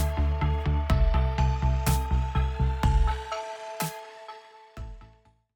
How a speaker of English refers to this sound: Oh, there goes the phone.